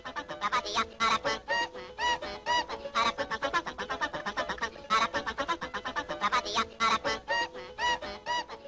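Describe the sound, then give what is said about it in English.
A sound effect of the call of the fictional Arkuan bird, used as Saul Guerrera's theme: a loud, nasal call of rapid, quacking honks repeats in quick rhythmic bursts for several seconds, bright and buzzy in tone, with no voices over it. “Saul has a theme song, Steve. Okay. It's our favorite bird of all time.”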